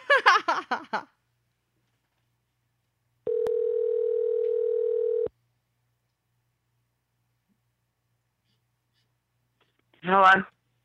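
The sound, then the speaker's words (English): A steady telephone dial tone hums for about two seconds while calling a man back, starting and stopping abruptly with a click. Brief speech comes before it, and after a silent pause a voice answers. “Let's fucking call him back.”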